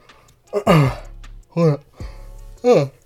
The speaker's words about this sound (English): What the fuck I'm yawning on my shit for? Excuse me.